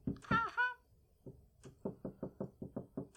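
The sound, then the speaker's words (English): A short voiced exclamation, then a steady series of about eight or nine firm knocks on a door, evenly spaced, ending abruptly. “Someone's at the door.”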